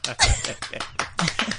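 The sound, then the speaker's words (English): A short burst of hands clapping, several sharp irregular claps in quick succession, moderately loud, with a faint hint of voices behind. “Give an applause?”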